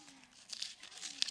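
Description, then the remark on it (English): Paper rustles and tears in a few quick, crisp bursts as envelopes are ripped open, with faint voices murmuring underneath. “Open your envelope and hold up the piece of paper that's in it.”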